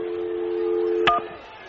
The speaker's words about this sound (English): Give me another dial tone. Sonny, how am I supposed to dial?